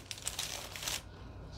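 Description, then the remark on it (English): Parchment paper crinkles and rustles for about a second, a soft crackle of handling that then fades to quiet, with no talking. “Parchment paper.”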